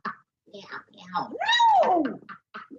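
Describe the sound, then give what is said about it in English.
A person imitates a cat's meow, one drawn-out rising and falling mew, with shorter vocal sounds just before and after. “Meow, meow. No. Meow, meow.”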